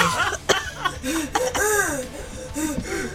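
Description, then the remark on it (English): A voice imitates a wheezing cough, as of Dean Tuna after smoke is blown into his mouth: a few sharp, harsh coughing bursts mixed with strained, squeaky voiced wheezes over about three seconds. “He, like, coughs. He's like a wheezing, like...”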